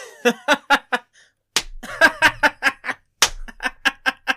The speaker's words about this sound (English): I don't think you could slap your knee any harder.